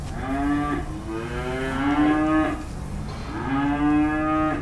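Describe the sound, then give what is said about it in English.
Several cows on the Bristol Vet Farm moo in overlapping, drawn-out calls, loud, with a steady low hum of farm noise underneath. No one speaks. “thank Michael Lee, John Tarleton, and the cows, of course, for having me to the Bristol Vet Farm”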